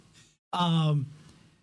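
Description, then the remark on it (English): A single heavy, breathy exhale with a voiced, sigh-like tone, loud, lasting about half a second after a brief silence, then fading into quiet background. “Because I can hear a lot of breathing.”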